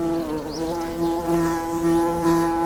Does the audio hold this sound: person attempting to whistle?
no